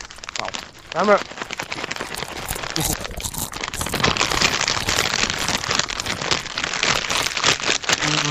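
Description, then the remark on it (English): Loud crunching of Ritz crackers and Cheerios into a microphone, a dense crackly texture that keeps going steadily, with a brief vocal sound near the start. “It's crunching, not singing.”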